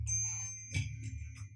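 Small bells from China ring with bright, high, lingering tones, struck a few more times after the opening chime, over a low, steady musical hum in the background.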